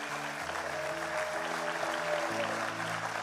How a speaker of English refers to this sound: Come on, family, clap for everybody that said that.